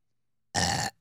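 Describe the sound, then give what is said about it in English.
A single short burp, forced out on command, breaks a silence: a brief, fairly loud croak lasting under half a second with no talking around it. “I mean, I can burp on command, but not good ones.”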